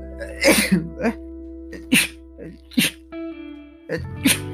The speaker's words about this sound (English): Oh, I need to sneeze.